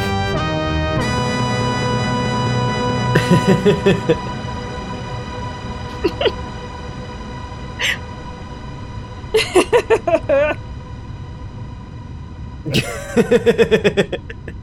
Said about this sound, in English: It just keeps going. It's a long tail on that reverb. It's a very long tail on that verb, yeah.